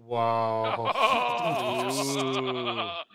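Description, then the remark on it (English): A single long, loud sheep bleat, wavering and quavering through the middle before cutting off after about three seconds, with no talking over it. “I was just helping that sheep over the fence.”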